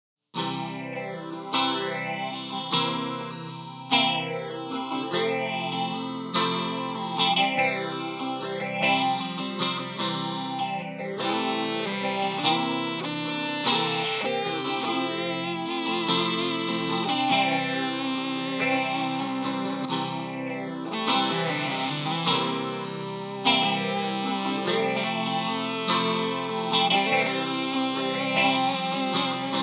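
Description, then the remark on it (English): Layered electric guitar loops played through looper pedals on the floor swirl with a thick chorus shimmer and gritty distortion, sweeping pitch bends rising and falling over a steady, dense wash of sustained chords for the full stretch, with no voices. “I've been having fun with the loopers lately.”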